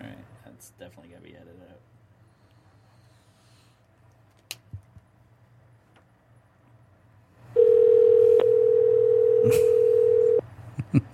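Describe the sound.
A loud, steady telephone dial tone hums for about three seconds while calling a caller back on the Undercard radio show, then cuts off abruptly, following a stretch of quiet, muffled voices and low background noise.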